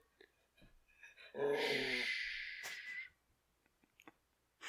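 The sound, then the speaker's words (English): A dog lets out a drawn-out growling, yipping vocalization lasting about two seconds, fairly loud against otherwise quiet surroundings with a few faint clicks and shuffles. “You got something to say, dog?”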